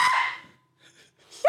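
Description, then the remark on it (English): A man reenacts the loud, startled scream he let out on seeing a spider: a sharp, breathy vocal burst that fades, a brief quiet, then a second shrill yelp that rises in pitch and cuts off. “Dude, like when I make the very manly scream, it actually backs up.”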